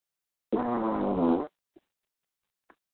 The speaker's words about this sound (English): Someone just fart? Nah. The hell was that? Nah, that was my dog.